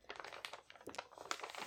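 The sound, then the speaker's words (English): Paper crinkles and rustles in a quick series of soft, dry crackles as a sheet with a written-down pick is folded and creased. No one speaks over it. “Okay, with Martian, the podcasting gods as my witness, I am writing down what I think is going to be Marsh's pick, and I'm folding the paper.”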